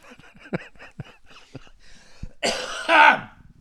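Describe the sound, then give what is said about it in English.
A loud fit of coughing and throat clearing: several short, raspy clearing sounds, then a harsh, heavy cough burst near the end, with no talking. “Anyway, I am coughing less.”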